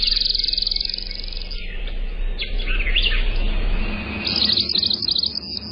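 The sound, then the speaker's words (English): A migrant songbird from down south sings a bright, rapid series of high chirps and warbled phrases, clear, repeating throughout over a low steady background hum. “another beautiful migrant from down south that lots of folks up north are hoping to see very soon is our featured feathered friend”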